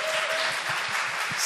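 A crowd applauds steadily, many hands clapping in a dense, continuous wash of sound with no pauses, holding a fairly even loudness throughout, welcoming a farm manager who is called up to the front.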